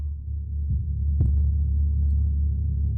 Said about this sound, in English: And there it is. Also has a heartbeat in it. Yeah, hear that? So all that combined makes this sound. Once again, your players aren't going to go, oh, I hear a slow, steady heartbeat that creates a sense of foreboding